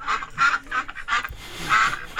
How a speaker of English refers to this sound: What is wrong with that duck? This duck's going through some shit. You know, feed this duck or something.